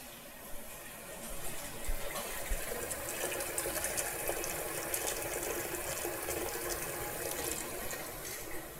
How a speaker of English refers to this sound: But to begin with, I'm just gonna boil up some pasta. So let me just fill this big pot that I have here with some water.